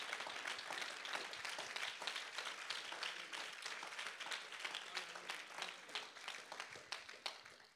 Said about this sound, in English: Man, clap your hands to Him again tonight.